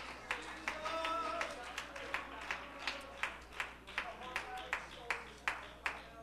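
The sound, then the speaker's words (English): An audience claps hands in a steady, rhythmic beat while voices shout to God and call out, loudest in the first couple of seconds before the clapping carries on more sparsely. “Come on, clap your hands and shout unto God with a voice of triumph.”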